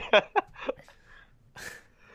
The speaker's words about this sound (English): I still got the cough, man.